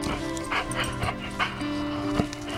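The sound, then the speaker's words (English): A search dog, Ruger, barks in a few short, sharp bursts between drawn-out, high-pitched whimpers and whines, fairly loud, with no one talking. “But not this dog, not this day.”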